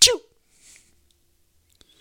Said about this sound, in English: I'd take that. Give me that little cat sneeze all you want to, please. I know a woman that sneezed like that. I used to tease her. I was like, you sneeze like a little doggy, like a chihuahua.